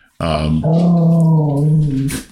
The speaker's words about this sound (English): One second, let me calm down this dog. She mad. She big mad. She is big mad.